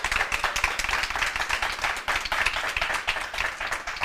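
Audience applause for the guests of a Cork Chamber panel discussion on the budget, a dense, steady patter of many hands clapping at once, sustained at an even level throughout with no voices over it.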